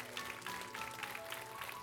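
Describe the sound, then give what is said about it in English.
A crowd claps steadily for police officers, a dense mass of overlapping handclaps at an even level throughout, with no one speaking over it. “How many love our police officers? Give them a hand clap.”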